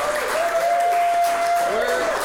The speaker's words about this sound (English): Every show, we have to ask them to start clapping again for a new show. So these are not three separate shows.